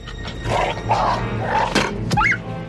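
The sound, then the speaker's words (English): Low, rumbling animal growls give way to a couple of sharp impacts, followed by a brief, high-pitched dog yelp that cuts off quickly as the dog is shot with a crossbow. Fairly loud, with no talking. “And then we see him aim, and there's a pause, and then he shoots that crossbow, and we hear that dog die.”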